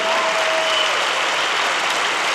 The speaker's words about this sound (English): Somebody clap and thank him that even if I die here, I'm the promise of everlasting life.